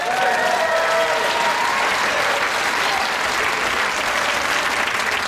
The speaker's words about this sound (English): Of course, she got applause, you know, first time on screen.